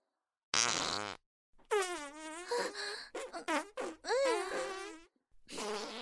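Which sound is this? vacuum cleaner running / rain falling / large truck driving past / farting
farting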